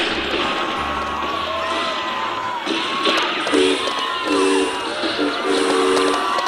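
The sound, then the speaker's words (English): A train rumbles steadily along the tracks, loud, with a dense clattering roar and several short, tonal whistle blasts sounding in the second half. “Whoa, I think it's time to get back on the train. All aboard!”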